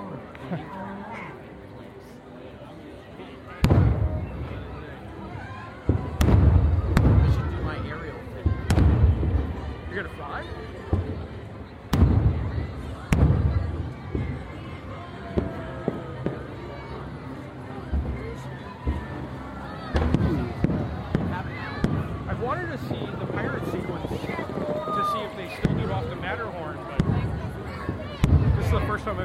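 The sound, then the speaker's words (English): Fireworks burst repeatedly from all sides with deep booms and sharp cracks, irregularly spaced and fairly loud, over a steady murmur of a crowd and people talking. “I wonder if we could get on teacups while the fireworks are still going.”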